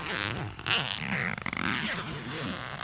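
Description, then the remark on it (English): A clothing zipper is pulled in long, raspy strokes, fairly loud, with a brief pause and a choppy stretch partway through, over a low humming background. “You do like a good zip.”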